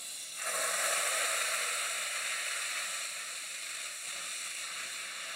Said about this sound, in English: Nothing better than that noise. I know, the best noise. Yeah. Sizzle, sizzle. And you can smell that guanciale. You can smell the fat. You can smell it intertwining.